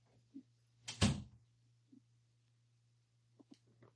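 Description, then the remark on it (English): A door is opened with a single loud, rattling thunk to let in a dog that was scratching at it, followed by a few soft taps and clicks over a steady low electrical hum, with no one speaking. “Excuse me one second while I let my dog in who's scratching at the door.”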